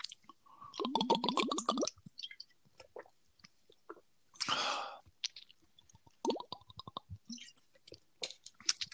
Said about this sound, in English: Are you like pouring that? Are you pouring that into your mouth? Why is there so many bubbles?